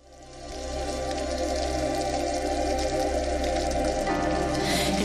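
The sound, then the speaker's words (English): A synthetic rain-like sound effect at the start of a song fades in over the first half second, then holds as a steady, dense patter layered over low droning musical tones, with no voices. “Okay, well, I'm gonna play a sound clip of the cheesy sound effects that begin this song, just so listeners can hear it.”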